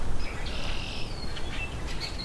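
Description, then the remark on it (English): A Rusty Blackbird sings a few squeaky, high-pitched whistled notes against steady outdoor background noise, the song fairly faint, with no talking. “He's still singing.”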